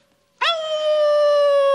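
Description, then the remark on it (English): A person, triggered by a hypnosis trigger word, lets out a loud, sustained wolf-like howl, starting abruptly with a rising onset and holding a steady tone to the end, alone without other speech. “snare drum was the trigger word that in that hypnosis episode that made him howl like a wolf.”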